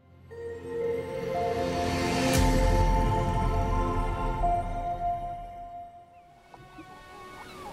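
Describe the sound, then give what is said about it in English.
Ocean waves crash onto the shore in a steady, rolling wash, swelling to a heavy low surge and then easing off, with sustained tonal notes ringing above and no talking. “He closed his eyes, felt the gentle kiss of the mild morning sun, and listened to the sound of gulls intermixed with crashing waves.”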